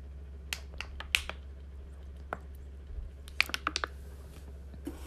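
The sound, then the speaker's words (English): A plastic disposable water bottle crinkles and crackles as someone drinks water from it, in sharp, irregular bursts, a few scattered pops then a quick cluster near the end, over a low steady hum with no talking. “Sorry about my crinkly plastic disposable water bottle.”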